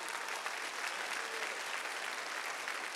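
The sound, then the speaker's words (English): Sustained applause from a large group fills the room, a dense steady wash of clapping hands that holds at an even, fairly loud level throughout with no talking; the group gives the Lord a hand clap of praise. “Give the Lord a hand clap of praise on that.”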